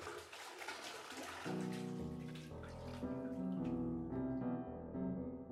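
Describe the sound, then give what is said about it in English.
Gentle swishing and lapping of salty bathtub water as fingers move across it, continuous, soon joined by soft sustained musical tones that play over the watery movement. “She graced her fingers across the salty water of the bathtub as it gave off a faint aquamarine glow.”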